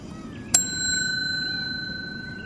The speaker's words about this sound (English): Just one bell.